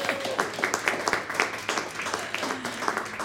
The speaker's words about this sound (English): Hallelujah. Finally passed a test. That's right. Big round of applause.